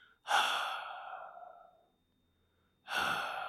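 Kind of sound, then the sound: vocal imitation, voice imitating heavy breathing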